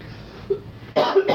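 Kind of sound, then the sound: human body sound, cough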